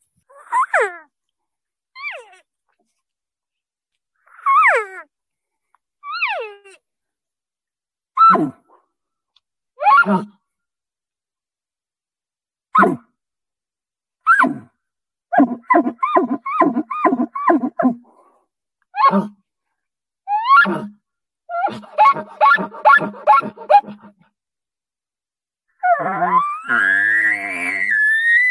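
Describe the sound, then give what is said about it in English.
A girl from La Grande, the World Elk Calling Champion, vocally imitates elk, giving a series of high, squealing bugle calls separated by pauses, then rapid rhythmic grunting chuckles and a final rough, drawn-out call, with no other speech. “became the World Elk Calling Champion”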